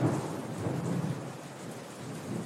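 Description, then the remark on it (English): Steady rain pours down in a continuous hiss, with a deep rumbling undertone like thunder rolling beneath it. No voices, just the dense, even wash of a downpour. “Number 9, stand in the rain.”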